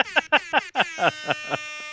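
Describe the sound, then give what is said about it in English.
A rap-style air horn sound drop played from a phone: about eight rapid, blaring horn blasts in a stuttering rhythm, each with a slight downward bend, the final ones trailing into a fading sustained tone. “I have the rap air horn on my phone.”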